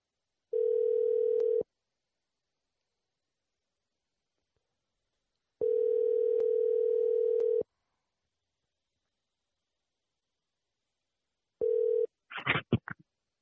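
A telephone ringback tone buzzes in three steady two-second bursts with long silent gaps; the third ring is cut short as the call connects and a brief voice answers.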